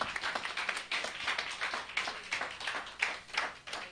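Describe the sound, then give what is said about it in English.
A church audience claps for the Lord after a prayer, in a dense, steady burst of applause, many hands overlapping into a continuous crackling patter with slight surges, and no one speaking over it. “Shall give the Lord a good clap off.”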